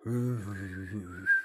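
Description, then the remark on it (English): A person imitates with their voice the hollow, very weak little whistle a grandmother made while walking around the house: one soft, breathy tone lasting just over a second, fairly quiet, ending in a faint rising note. “She would have this kind of hollow little whistle.”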